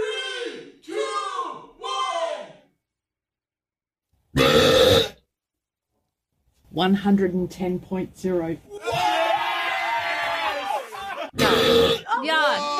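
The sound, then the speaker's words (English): A recording of the Guinness World Record holder for the loudest burp ever: short croaking vocal bursts and a brief blast, then a long rasping belch that roars on for several seconds, very loud and harsh. “What you hear when we do the Guinness World Record holder for the loudest burp ever.”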